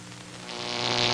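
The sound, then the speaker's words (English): A steady electrical buzz from an obsolete filament light bulb lit by turning a transformer knob all the way up, with a low humming drone and bright hiss that swell louder as the bulb brightens, no voices present. “Do they buzz like that?”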